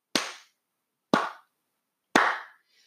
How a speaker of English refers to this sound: So happy retirement to Luke Kuechly, and here's a golf clap for you, my friend.